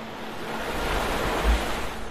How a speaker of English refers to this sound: He walked to the direction of the sound of the flowing water, which was getting louder. He then stopped to listen to the faint sound coming from the direction of the streaming river.